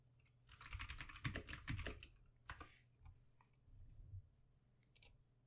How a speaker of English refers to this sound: I'm just typing it in, I'll be honest.